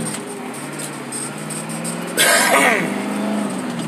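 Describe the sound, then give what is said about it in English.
A steady, low engine drone fills the cab of a loaned 1991 Ford V8 diesel pickup truck with a standard shift as it cruises down the road, with a brief breathy, cough-like burst partway through before the rumble carries on. “Still in the loaned V8 diesel pickup truck.”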